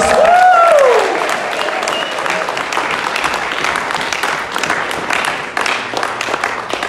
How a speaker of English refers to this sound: Let's give Jesus a big cheer. Can we do that?